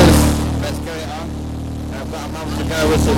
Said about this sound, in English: He's inside of a Doom Buggy, so you hear the engine.